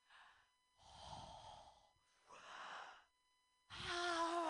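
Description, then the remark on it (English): A person doing breathing exercises takes slow, deliberate deep breaths: a few loud, airy inhales and exhales in a steady rhythm, ending in a long, forceful exhale with a voiced, sighing tone. “Of course, let me finish my breathing exercises.”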